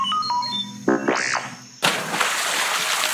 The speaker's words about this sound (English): What a splash Lumpy made when he landed.